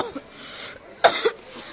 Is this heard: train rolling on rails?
no